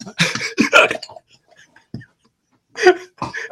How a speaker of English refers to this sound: I can't really feel anything, but I've got the hiccups.